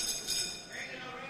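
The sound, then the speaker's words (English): A single bright quiz bell, signalling that a contestant's 3 seconds to answer are used up, strikes and rings out, its high, shimmering overtones sustaining and slowly fading over just over a second. “To alert you that you've used up your 3 seconds, we have a bell.”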